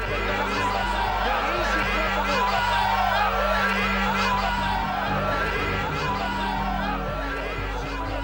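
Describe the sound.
A large crowd outside a hospital in Israel, after the assassination of Prime Minister Yitzhak Rabin, chants and shouts "Bibi is a murderer" together, a dense, steady wall of many voices that stays loud throughout, with a low rumbling hum underneath.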